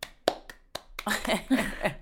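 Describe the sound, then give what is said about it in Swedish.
A lone person claps four times at a slow, uneven pace, each clap a sharp, dry smack. Right after the last clap, someone begins talking. “Det blir så effektfullt när en person applåderar.”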